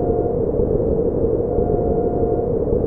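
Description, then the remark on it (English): A steady, dense synthesizer drone from a Moog Concertmate MG1, rumbling and buzzing at constant loudness for the whole stretch, with a faint sustained midrange tone riding on top and no voices. “All the sounds you just heard were made with a Moog Concertmate MG1.”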